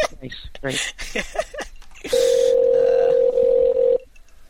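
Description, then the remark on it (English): After a couple of seconds of talking, a phone rings on an outgoing call: one steady, loud electronic ringback tone holds for about two seconds, then stops. “While the phone's ringing.”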